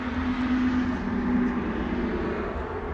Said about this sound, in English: Car tire in the key of A.